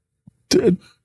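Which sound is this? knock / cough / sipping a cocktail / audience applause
cough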